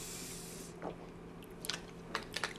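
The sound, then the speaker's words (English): Someone sips a canned coffee drink, with soft wet mouth clicks and slurps in a few quiet bursts over a faint steady hum. No one speaks. “I'm gonna take another sip of this.”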